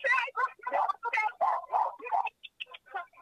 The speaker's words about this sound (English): I think the dogs in your background